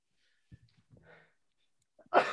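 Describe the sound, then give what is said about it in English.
A single loud, explosive sneeze bursts out at the end, preceded by a few faint breathy intakes and soft murmurs in an otherwise quiet moment. “Bless you. Excuse me.”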